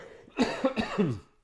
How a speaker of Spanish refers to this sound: Hoy estoy complicado, con el tema de la tos, estoy complicado en el día de hoy, Qué lo parió, qué bárbaro.